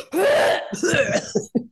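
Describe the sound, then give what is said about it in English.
A harsh, gravelly cough: one long rasping hack followed by a few quick, sharp coughs, loud and strained, with no talking; a person coughing to dislodge a chunk of cinnamon from a protein drink stuck in the throat. “Gives you an ugly cough.”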